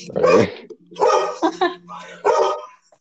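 dog barking and growling

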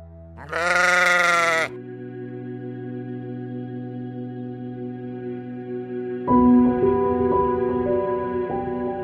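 sheep bleating

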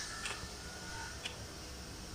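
wall clock ticking

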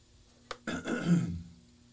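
cough and throat clearing

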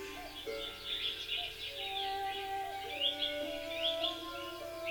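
cuckoo calling

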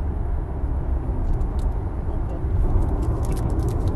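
car driving

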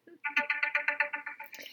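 mobile phone ringtone ringing

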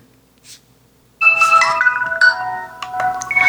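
phone ringtone played

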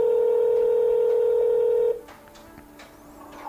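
telephone dialing a call

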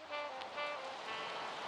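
rain falling

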